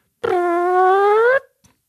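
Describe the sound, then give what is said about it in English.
A single buzzy, fart-like whoosh with a slowly rising pitch, lasting just over a second, loud, a voice imitating the sound of a cartoon character flying away. “It just sounded like he farted off, right?”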